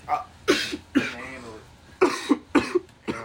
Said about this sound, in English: I was trying to prevent from coughing, dickhead.